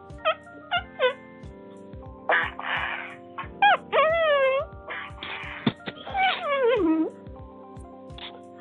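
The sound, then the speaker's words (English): Someone imitates a sick dog, letting out a run of high, wavering whines and short yelps with breathy gasps between them, over a soft steady pulse. “That sick dog.”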